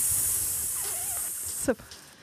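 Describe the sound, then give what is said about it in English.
A person makes a long, steady snake-like hiss for about two seconds, ending in a short voiced grunt; moderately loud, with no words spoken. “Snakes. Very reptilian today.”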